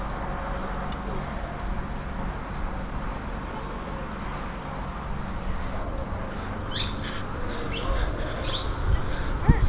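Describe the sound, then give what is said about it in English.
Bird calls and short chirps from a bird inside a house rise over a steady outdoor hiss of rumbling background noise, growing more frequent and a bit louder toward the end. “Have you seen that bird? That's a bird.”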